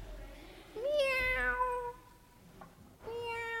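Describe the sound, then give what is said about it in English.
A small kitten, small enough to fit in the palm of a hand, found at night in Białowieża Forest in eastern Poland, meows twice: first a long, high-pitched wavering cry, then after a brief pause a second thin meow begins. Fairly clear, with no talking. “We stopped at night to get something to eat, and I found a little kitten, and she was so small that she fit in the palm of my hand.”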